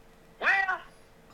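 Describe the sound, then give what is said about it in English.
A single short cat meow, bright and drawn out for about half a second, with nothing else around it but faint background hiss. “I hadn't seen a damn one-eyed gray cat in a minute.”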